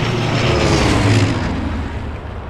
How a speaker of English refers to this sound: get that engine up and running in 2 minutes, or you'll use your super senses to taste each and every one of your wrenches.